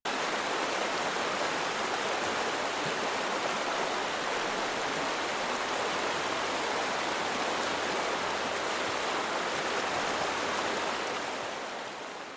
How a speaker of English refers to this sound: From one angle, the river flows by, from right to left